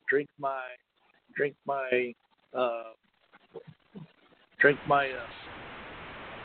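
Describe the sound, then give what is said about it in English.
A voice talks in short bursts, then a steady, fairly loud hiss on a phone line rises under the last words and keeps going on its own to the end. “I put you on hold there for a moment because there's a weird hiss”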